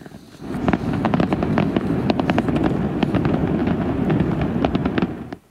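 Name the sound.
fireworks exploding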